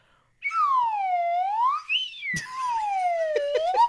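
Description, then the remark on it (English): A slide whistle played on its own by someone still getting the hang of it, its bright, breathy tone swooping down and back up in long smooth glides, pausing briefly midway before another wavering slide. “And for those who remember, it is a slide whistle. So I'll just play a little bit now.”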